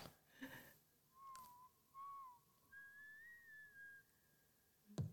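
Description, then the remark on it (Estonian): A short whistled melody in three phrases from a K-pop song, clear, with a breathy rustle before it and a sharp knock at the very end. “Ma pärast küll arvan, et väikse vile jupi peale nagu.”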